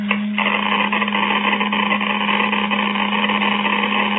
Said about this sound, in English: Unless this machine is busted, unless this Geiger counter has forgotten its multiplication table, we have